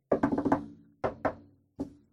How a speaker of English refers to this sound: That was me saying, I'm knocking on wood. I am knocking on wood so that I still feel good.